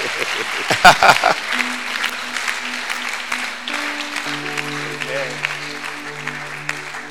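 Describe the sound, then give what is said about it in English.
A crowd claps steadily in a dense, continuous patter throughout, with a burst of louder claps early on, while sustained low keyboard notes come in underneath. “I thought you'd be clapping.”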